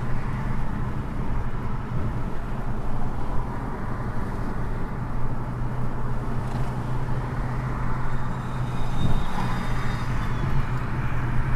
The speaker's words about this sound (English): San Jose traffic is not as inviting as one might think.